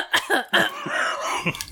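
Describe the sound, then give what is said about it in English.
A person clears their throat, with a few short, rough bursts followed by a longer gravelly rasp and one final hack, with no talking. “All right, let me clear my throat.”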